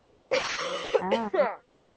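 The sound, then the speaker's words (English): A single fairly loud cough lasting about a second, a harsh breathy burst that turns rough and throaty at the end, with quiet before and after. “No, that was me coughing.”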